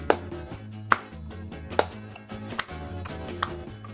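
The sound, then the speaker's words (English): Five sharp hand claps land at a slow, steady pace, a little under a second apart, over a low humming, tonal background with no voices. “Okay, now clap your hands.”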